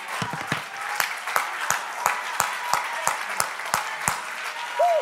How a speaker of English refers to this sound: Come on, clap your hands unto the Lord and magnify him.